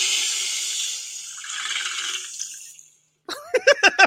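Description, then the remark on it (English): A toilet flushes with a loud, hissing rush of water that swirls and fades out over about three seconds. After a short pause, a few quick voiced bursts, like laughter, follow. “You just got flushed down the toilet.”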